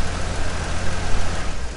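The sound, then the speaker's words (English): The engine of a black classic car, about 130 horsepower with a single Strongberg carburetor, idles in a steady low rumble with a slightly uneven throb that holds at the same level throughout, with no voices. “130 horsepower. Is that a single Strongberg carburetor?”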